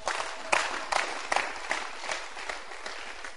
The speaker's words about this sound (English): Can you clap your hands again?